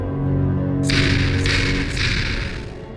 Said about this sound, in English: The knock came by a single, ominous knuckle. I knew exactly whose fist it belonged to.